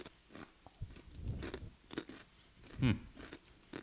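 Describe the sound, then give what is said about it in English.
Crunchy chewing of a mesquite-flavored potato chip, with a series of irregular crackling bites and one louder crunch near the end, heard alone without talking. “But she's eating the potato, and it does sound crunchy.”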